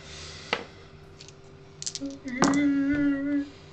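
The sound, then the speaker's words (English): Three dice are rolled: several small, sharp plastic clicks and clatters scattered over a few seconds as they tumble across a hard surface, with a voice speaking briefly near the end. “This is with 3 dice.”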